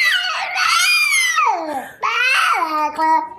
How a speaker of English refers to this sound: The kid's just talking gibberish. That's what he's talking. He's talking gibberish.